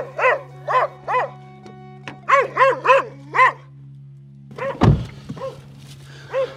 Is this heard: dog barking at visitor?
yes